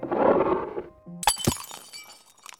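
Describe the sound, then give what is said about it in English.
A drinking glass shatters with a sharp crash, followed by a scatter of tinkling shards settling. A low rumbling clatter comes just before the break, and the glass sound is fairly loud. “That was my last glass as well.”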